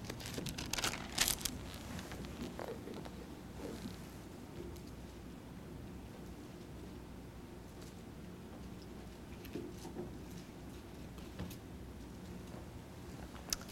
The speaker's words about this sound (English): That's Matthew chapter 24. I hear a few pages. Most of you have those computers, but a few pages.